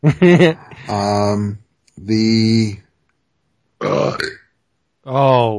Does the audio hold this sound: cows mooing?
no